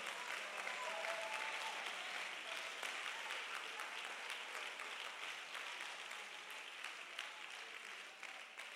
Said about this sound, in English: Oh, come on, let's clap our hands and love him.